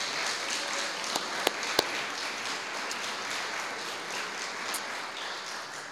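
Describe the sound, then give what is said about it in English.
An audience at a worship service applauds the early childhood learning center preschool staff steadily, a dense, continuous wash of many hands clapping for the full six seconds, with a few sharper individual claps popping out early on. No one speaks. “A round of applause for those folks.”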